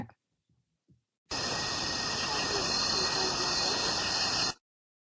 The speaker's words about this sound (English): Oh, I hear crickets. It makes me just like want a nice summer night. Okay, let me play it again. Okay. Oh, I can't make that out because I hear the crickets.